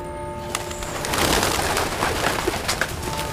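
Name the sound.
pigeons cooing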